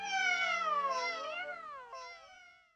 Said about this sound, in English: Oh, I have kittens meowing right now. Hi! Because they heard the other kittens Hi, meowing.